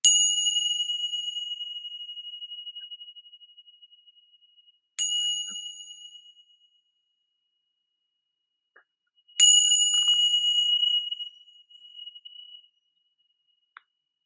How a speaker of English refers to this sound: So the first thing I'm going to do is do the chime. So if you're listening and you've got ear pods on or anything, you know, protect your ears. Here we go.